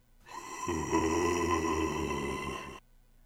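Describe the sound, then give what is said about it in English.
A spooky moan sound effect, "Moan 2" from an online Halloween soundboard: a single sustained, wavering groan lasting over two seconds, rich in low tones that swell in partway through, then cutting off abruptly. No talking. “Moan 2. I think Moan 2 is definitely the winner there.”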